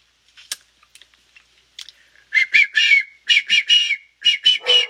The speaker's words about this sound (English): I'm a terrible whistler.